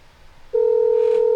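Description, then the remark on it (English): A loud, steady electronic telephone tone switches on abruptly after a brief quiet moment and holds unbroken to the end, like a keypad tone on a phone line, as someone calls back a caller who hung up. “Call back. I'm about to call you”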